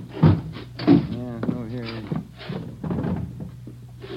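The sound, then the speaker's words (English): A hotel room door, number 345 on the third floor, is unlocked and opened: two solid clunks from the lock and handle, then a wavering creak as it swings, followed by quieter shuffling and faint movement. “345. Open it up.”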